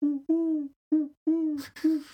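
A voice imitates dove cooing with a series of five low, hollow hoots in an uneven rhythm, fairly loud, the last notes roughened by a breathy rasp.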